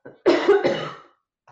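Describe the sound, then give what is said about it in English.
A single fairly loud cough with a harsh, breathy burst that breaks into two or three quick spasms, preceded by a faint intake of breath, then quiet. “One of the things, sorry, I'm going to cough.”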